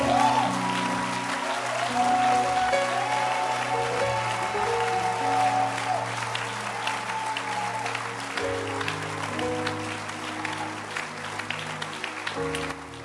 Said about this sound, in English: I want you to stand to your feet and clap your hands for our pastor,